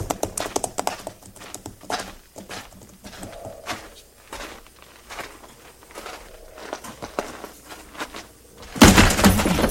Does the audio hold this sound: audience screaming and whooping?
no